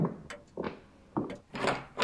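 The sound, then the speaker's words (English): Several hollow knocks on a wooden door, unevenly spaced, each leaving a brief resonant tail, with no voices present. “And a mysterious door knock to boot.”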